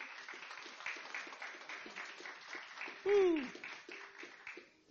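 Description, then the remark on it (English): A church audience gives God a round of applause with steady, dense clapping, joined midway by a single loud whooping cheer that slides downward, before the applause thins out near the end. “Give God a round of applause, church.”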